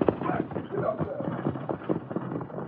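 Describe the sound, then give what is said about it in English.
Horses' hooves clip-clop in a quick, steady rhythm as the horses are whipped up and driven off, the clatter fairly loud against a rough, noisy background. “Whip up them horses and hightail.”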